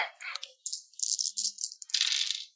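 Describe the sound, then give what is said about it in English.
Six dice rattle and clatter for a couple of seconds in a tabletop game roll, a busy burst of bright clicking that pauses briefly and then rolls again, with no one talking. “I'll do six dice then.”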